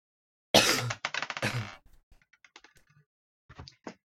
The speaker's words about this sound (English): Dropping my dice everywhere.